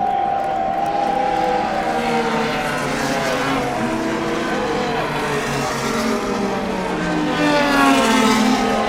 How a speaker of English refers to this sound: So here we go again. We've got the pace car out in front by about 200 yards. Now we've got the first of the race cars.